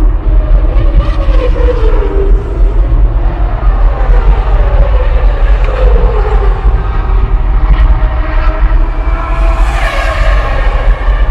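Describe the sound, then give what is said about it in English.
Loud, steady roar of vehicle engines with tones that repeatedly rise and fall as cars drive past, forming a constant wash of traffic noise with no voices. “You hear all the car sounds, right?”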